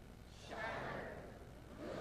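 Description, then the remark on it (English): An audience lets out a collective breathy gasp on cue, a swelling "oh" that rises and fades, followed by the start of another wave near the end. “Now when I go number two, I want you to go, oh, like a gasp.”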